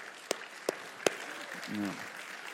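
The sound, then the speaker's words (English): Soft, steady applause from a church audience showing appreciation for the children's ministry workers, a hiss of many hands with three sharper single claps popping out early on, and a brief voice rising over it near the end. “Let's show our appreciation to those children's ministry workers.”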